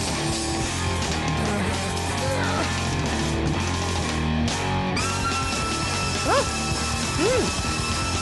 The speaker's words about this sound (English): That fucking scream is rad. I know. I think that's a sax. It's a cat? It's a sax. Sax muscle. It's a cat. That could be.